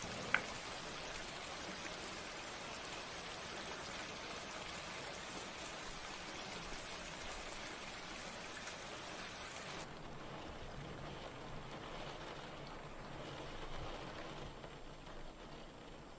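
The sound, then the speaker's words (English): Steady rain hisses outside in a continuous, even wash, with no voices. Partway through, the sound turns slightly duller and more muffled. “It's raining outside.”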